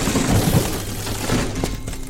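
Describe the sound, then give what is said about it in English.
A pub door is smashed open by armed people in uniform storming in, with a loud crash of splintering and banging, followed by rattling debris and a few sharp knocks as the noise settles. “It was then the door to the squid was smashed open.”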